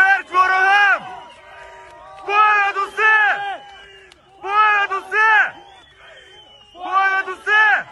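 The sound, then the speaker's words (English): A large crowd in Kherson, Ukraine, shouts 'Slava Ukraini' (glory to Ukraine) in unison as Ukrainian soldiers enter, a rhythmic chant repeated in four loud bursts separated by brief pauses, voices strong, with a faint murmur of crowd noise between rounds. “People singing the Ukrainian national anthem, shouting Slava Ukraini, glory to Ukraine.”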